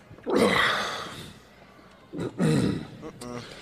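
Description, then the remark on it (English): A long, loud, throaty burp rumbles for about a second, then after a short pause a second guttural belch follows, slightly shorter. “But I can beat that burp.”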